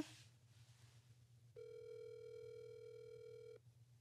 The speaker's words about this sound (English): So I am going to give you guys a ring. The first person I'm calling is